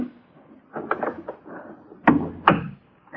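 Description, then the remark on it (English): An unlocked wooden door to a man's room is handled: soft clattering and creaking, then two sharp, loud wooden thuds in quick succession as it swings and shuts. “His door was unlocked. Nobody saw me go in.”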